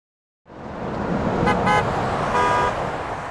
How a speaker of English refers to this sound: Hundreds of horns honked as our driver skillfully navigated the busy roads of Ulaanbaatar.